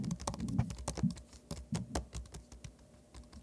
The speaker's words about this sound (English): It sounded like somebody clicking on the keyboard, but it was like an audio like message. Like, it wasn't even a real person.